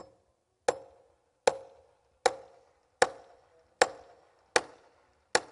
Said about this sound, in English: Starts hammering on him again.